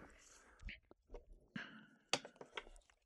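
A deck of cards being cut up close, a quick series of crisp snaps and papery shuffles scattered over a few seconds, with one sharper slap near the end.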